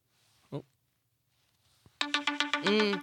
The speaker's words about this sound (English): Those are your alarms.